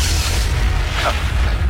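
A hip-hop song plays loud and close, its heavy booming bass pulsing steadily under a dense, bright mix, with no one talking over it.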